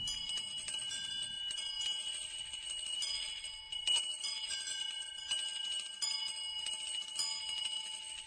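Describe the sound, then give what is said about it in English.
A disused bell hanging in a room rings continuously with rapid, overlapping metallic strikes and long shimmering overtones, steady and fairly loud throughout, with no voices. “A disused bell that hung in the room began to ring.”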